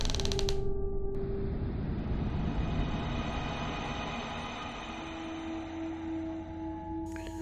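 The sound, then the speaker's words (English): A closet door creaks slowly and steadily shut for several seconds with a drawn-out, groaning squeal, ending in a brief metallic click as a woman quietly locks it with a key from her nightgown pocket. No voices. “And with a smile, closes the closet door, smoothly takes a key from her nightgown pocket, and quietly locks the closet door behind her.”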